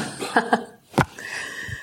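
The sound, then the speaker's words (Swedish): A dog barks in short, sharp bursts: two quick yaps close together, a brief pause, then one louder bark, with no one talking over them. “Vi försöker även uppfostra hundar i podden.”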